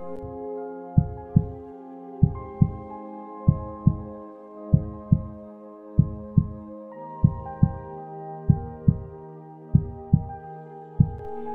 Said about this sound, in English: I want you to put your hands on your chest. Feel the rhythm of your heart. Feel the miracle inside of your body. Remember that you are a miracle. Focus on your heartbeat.